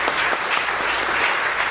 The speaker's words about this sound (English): Let's give Ruth, she'll be listening in, so we'll give her a round of applause today.